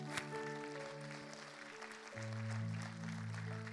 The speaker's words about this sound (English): So I really just give them a round of applause, because, yeah.